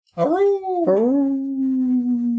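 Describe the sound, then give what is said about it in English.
A person imitates a wolf howl with their voice: a short rising-and-falling howl, then a second that rises and settles into a long, steady, mid-pitched tone. “so you encounter some wolves.”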